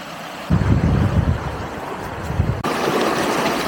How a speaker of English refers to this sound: Yeah, this little creek just goes like right here alongside the trail, and then it picks up speed right here.